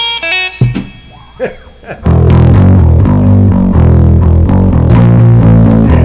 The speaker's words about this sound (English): Some nice distortion, baby.